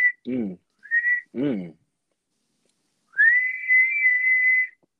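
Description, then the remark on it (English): A person whistles short high tones between two brief vocal bursts, then holds one steady, clear high whistled note for about a second and a half before it stops. “Who whistled that? Me.”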